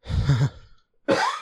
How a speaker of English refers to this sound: You're going to have to excuse me tonight because I'm going to cough my ass out.